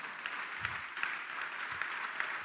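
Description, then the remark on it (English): A crowd claps steadily as a clap offering to God, dense overlapping applause filling the room with a few sharper claps standing out, sustained and fairly loud throughout. “Give God a clap offering.”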